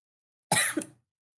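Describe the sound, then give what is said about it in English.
A single short, fairly loud cough, with an abrupt harsh burst and a smaller second push before it fades out, surrounded by silence. “The cough. That means yes.”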